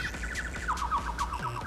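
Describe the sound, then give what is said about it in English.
Rapid, high-pitched bird chirps and tweets repeat in quick trills at a steady moderate level, over a low rumbling background, with no talking. “Where are those bird sounds?”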